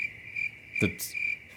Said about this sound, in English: A 2018 State Department report said the noises U.S. diplomats heard were likely local crickets.